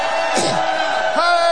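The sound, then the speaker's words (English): A crowd of voices shouts together for ten seconds, crying glory and hallelujah, in a loud, dense roar, with overlapping cries and whoops rising and falling over a steady wash of sound. “All right, let's do some shouting. 10 seconds.”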